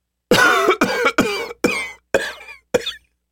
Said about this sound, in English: He coughed badly before replying